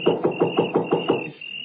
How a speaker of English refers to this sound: It was so dark I couldn't see where the doorbell was, so I knocked.